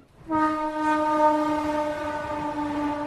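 A train on railroad tracks at the edge of a sprawling slum in Kolkata, India, sounds one long, steady horn blast that starts abruptly and holds loud for about three seconds over a low rumbling background, with no voices.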